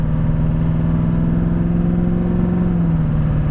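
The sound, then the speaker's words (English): A pickup truck engine pulls through steady, moderate normal acceleration, shifting at 2,400 RPM without revving all the way out, a smooth low drone with a slowly shifting pitch, continuous with no talking. “So here's, you know, normal acceleration.”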